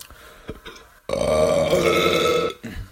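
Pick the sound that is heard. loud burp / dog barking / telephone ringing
loud burp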